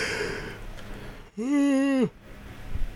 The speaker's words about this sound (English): I'm yawning. Sorry.